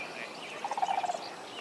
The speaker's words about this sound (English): And then, down in the wetland, I hear the sandhill cranes bugling. Last week, I saw them leading their two young colts through the alfalfa field.